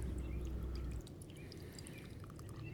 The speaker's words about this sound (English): Let me pour myself a goddamn drink.